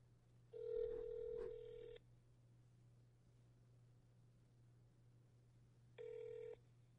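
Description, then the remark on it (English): A phone line ringing as an outgoing phone call is placed: two electronic ring tones, a longer one near the start and a shorter one several seconds later, over a steady low hum with no one talking. “I'm about to make another phone call.”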